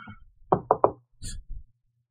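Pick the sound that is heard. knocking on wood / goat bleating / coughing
knocking on wood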